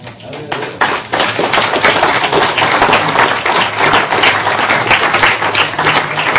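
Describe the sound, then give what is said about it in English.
A church audience breaks into sustained applause, many hands clapping in a dense, crackling wash that starts sparse, swells within a second and stays loud and steady throughout. “And if you want to clap, feel free to clap.”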